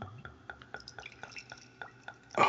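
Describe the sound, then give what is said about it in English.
Beer poured into a glass, a quick run of bubbly glugs and splashes that ends in a brief, louder fizzing rush, as someone pours themselves a little of a beer made with bourbon extracted from barrel walls. No voices are heard. “I'm gonna pour myself a little.”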